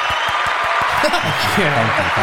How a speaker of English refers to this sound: Thank you. Okay, I'll cut that short. It's like 10 seconds of clapping.